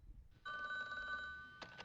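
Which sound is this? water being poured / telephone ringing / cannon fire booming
telephone ringing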